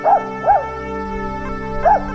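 A dog gives three short, high-pitched yips with a whimpering tone, two close together and one after a pause, over a steady droning background.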